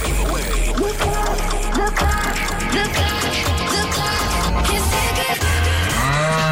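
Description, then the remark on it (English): A cow moos over a busy, loud music bed in a Cork's 96 FM cash cow radio promo, the drawn-out lowing rising and bending near the end, with no one speaking. “Take on the Cork's 96 FM cash cow to win mega”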